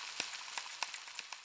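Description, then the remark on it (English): Steady, close-up sizzle of sausages frying in a pan, a hiss of hot fat broken by frequent sharp pops and crackles, with no voices. “I wake up to the smell of frying sausages, toast, eggs, and I hate it.”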